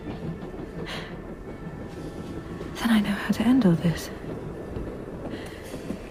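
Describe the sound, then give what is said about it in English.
Train carriages with big cast iron wheels rumble steadily along the rails beneath a quiet spoken voice, the clatter swelling briefly louder midway before settling back into a continuous low roll. “The bottom of the carriages, the bolts and trains and big cast iron wheels.”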